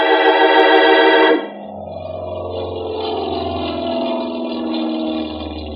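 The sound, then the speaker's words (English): A loud, dense engine roar cuts off abruptly, giving way to a steady aircraft drone with a deep low rumble that swells and fades slightly, as planes take off and land at San Mateo Airport on a nice afternoon. No one speaks. “It was a nice afternoon, so I stood watching some of the planes take off and land.”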